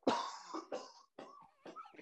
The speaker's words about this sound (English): Fucking mouth. You got COVID, you dickhole. I did. The first cough. Sorry.